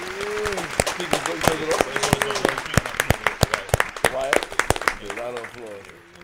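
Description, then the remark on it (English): A round of applause with sharp, uneven claps running through the whole stretch, while several voices talk and call out loudly over them. “Round of applause, man.”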